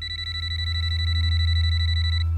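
A telephone rings before dawn with a rapid, warbling high-pitched trill that holds steady over a low, constant hum, then cuts off just before the end.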